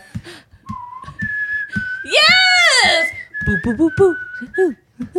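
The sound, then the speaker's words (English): A woman whistles a wavering, melodic tune with sliding pitches and a loud, harmonically rich swell in the middle, mimicking reverb, punctuated by brief vocal bursts and a shouted exclamation. “She's mimicking, the reverb.”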